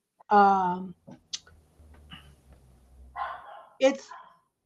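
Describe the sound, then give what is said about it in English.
Dogs bark in a few sharp bursts on a windy day: a loud, drawn-out yelping bark at first, then a pause with low rumbling in the background, then two more quick barks. “It's so windy outside. My dogs are freaking out.”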